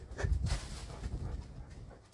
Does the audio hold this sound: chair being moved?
no